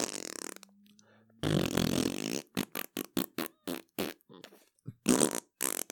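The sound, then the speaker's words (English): A person blows a series of wet, buzzing raspberries: one long low drawn-out blast, then a string of short sputtering bursts in quick succession, loud and alone. “I think it's because I blew those raspberries.”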